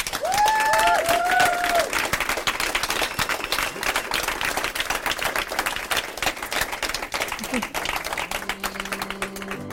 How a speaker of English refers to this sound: And please join me in one last applause for the three of them.